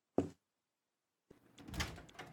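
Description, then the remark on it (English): Mark opens a door: a sharp latch click, a brief silence, then another click and a soft scraping, rustling swing as it moves. Fairly quiet, with no voices. “Mark opens the door, and Mom and Dad are standing right outside.”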